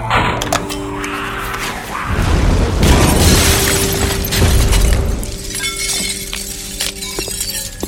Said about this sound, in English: Mark 56 hand grenade. Yep, it even stopped a bull elephant in its tracks.